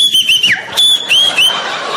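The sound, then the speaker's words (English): A voice imitates a whistling nose with thin, high-pitched whistles that wobble and slide, one dipping downward, in a few short bursts over breathy noise. “You get that irritating whistle in your nose?”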